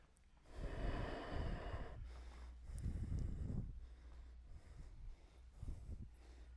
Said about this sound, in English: Deep rhythmic breathing.